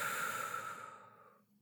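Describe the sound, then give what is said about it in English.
After a deep breath in, a soft, airy breath is released slowly through the mouth, steady at first, then tapering off into silence. No one speaks. “So let's take a nice deep breath in here. And then releasing it slowly through the mouth.”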